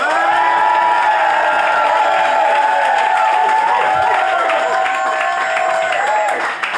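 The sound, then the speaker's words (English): A large live audience cheers and applauds loudly, many voices whooping and shouting over steady clapping, sustained at full volume for several seconds before easing slightly at the end. “I would like you to applaud right now.”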